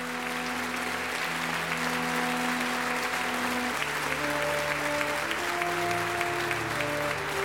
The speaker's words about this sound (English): Thunderous applause and another successful night here at the Playhouse. Our thanks to Mr. Pete Lutz and the Narada Radio Company players for their performance of this classic Escape episode.